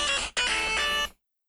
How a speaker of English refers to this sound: Did you just play the DuckTales theme? Straight DuckTales. I got the video game on my phone.